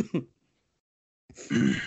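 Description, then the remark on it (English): A short throat-clearing cough, a brief pause, then a louder, harsher cough burst, with no talking. “You got my cough from last week?”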